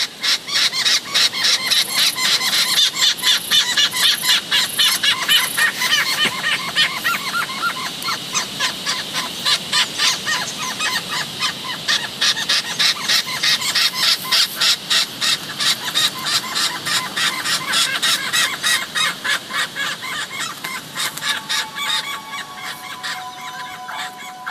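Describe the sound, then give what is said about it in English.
A male king parrot calls alongside a juvenile begging for a feed, a dense stream of rapid, insistent squawks and chattering cries repeating for the whole stretch, with no talking. “And this recording of a king parrot male and a juvenile who is begging for a feed.”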